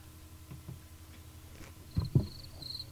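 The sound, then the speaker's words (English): Thin, high-pitched cricket chirps trill faintly in the second half, joined by a couple of soft low thumps, with no one speaking over them. “Ah, crickets.”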